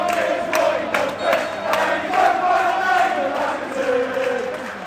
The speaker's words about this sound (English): Arsenal have just scored and the crowd are going mad. I have to say it's been easier to watch the crowd than the game, but that's a great goal.